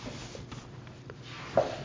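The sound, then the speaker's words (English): A page of a Harman's edition book being turned: soft, papery rustles and brushes over a low hum, ending in one brief, slightly louder crisp flick. No one speaks. “Turning the page in my Harman's edition.”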